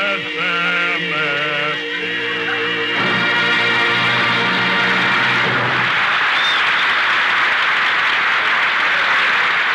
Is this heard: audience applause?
yes